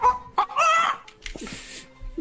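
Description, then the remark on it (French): A chicken clucks and squawks in a quick, agitated series of calls as it moves about, loud, with a brief pause before a few lower clucks follow. “Mais avec un poulet qui se déplace comme ça.”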